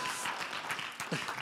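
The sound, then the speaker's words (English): Steady, dense clapping from a church audience fills the whole moment, a continuous rattle of many hands, with a brief voice rising over it near the end. “The reason I'm applauding you guys is because racism's on both sides.”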